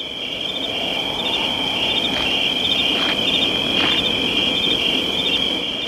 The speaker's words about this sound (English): Those crickets.